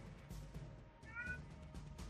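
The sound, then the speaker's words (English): A single short cat meow rises briefly over a steady, low background rumble, fairly soft and lasting only a fraction of a second, with no one talking. “The cat?”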